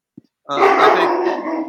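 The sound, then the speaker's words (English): A household dog growls in a steady, rough rumble lasting over a second, fairly loud, preceded by a brief soft sound; no one speaks. “Our dog is in the background.”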